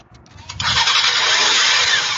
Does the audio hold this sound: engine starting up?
yes